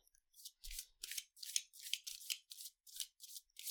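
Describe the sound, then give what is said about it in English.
Crisp papery swishes repeat in a quick steady rhythm, about ten short bursts, as a deck of oracle cards is shuffled by hand with no one speaking. “I'm going to give it one more shuffle here.”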